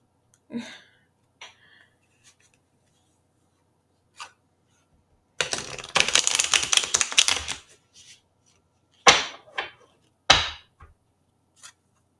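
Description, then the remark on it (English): Cards being shuffled: a few light taps and slides, then a dense fluttering riffle lasting a couple of seconds, followed by two sharp snaps as the deck is squared. “I'm not a fast shuffler, y'all.”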